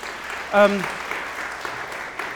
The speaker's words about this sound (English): Yes, a round of applause, please.